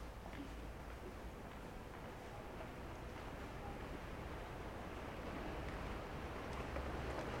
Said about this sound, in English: The vaporettos, or water buses, pass us by as we stand bewildered in the darkness.